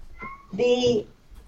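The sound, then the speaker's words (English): A female domestic cat, one of the speaker's cats, gives one fairly loud, drawn-out meow lasting about half a second, preceded by a brief, softer tonal sound. “You can hear one of my cats, by the way. She's in the podcast.”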